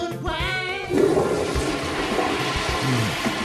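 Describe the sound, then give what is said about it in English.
A toilet flushes with a loud rushing whoosh of water that swirls and gurgles steadily for a few seconds, with no one talking. “Whenever and wherever nature calls, you can answer her at Piss and Shits. Our bathroom facilities are second to none.”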